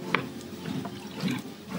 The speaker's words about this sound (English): Okay. Have some water. Water break.